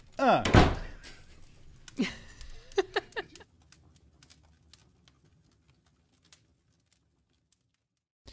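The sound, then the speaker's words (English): A heavy door slams shut with a loud, booming thud. A few softer knocks and rattles follow, then scattered faint clicks fade into near silence. “Don't turn around. No, fuck, go. That's right. Slam the door.”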